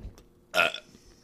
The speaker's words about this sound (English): Oh, I got hiccups because.